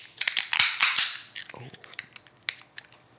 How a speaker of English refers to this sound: All right. It's everybody's favorite part, I presume, because it's mine. So it must be everybody's. Let's grab the can, grab your glass, and let's open her up.